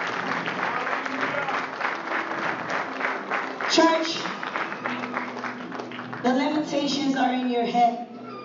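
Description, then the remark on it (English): A church audience claps steadily and loudly for Jesus throughout, dense overlapping hand claps filling the space, with raised voices and singing rising over the applause near the middle and end. “Oh, clap for Jesus.”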